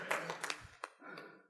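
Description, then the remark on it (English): An audience claps briefly, a soft, scattered burst of many hands with a few sharper claps standing out, fading after about a second and a half. “Go ahead and clap on that.”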